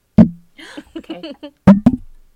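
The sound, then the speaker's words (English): A glass clinks loudly against a microphone in a toast, one sharp ringing knock, then a quick double knock a moment later, with a voice murmuring briefly between the hits. “Oh, cheers your mic.”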